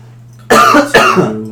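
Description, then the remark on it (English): Two sharp, loud coughs, one right after the other, with a faint steady hum in the background. “Oh, I'm coughing.”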